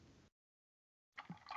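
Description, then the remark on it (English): A woman drinking water, with a short burst of noise, a pause of silence, then louder swallowing and gulping sounds. “As she's taking a drink. It's water.”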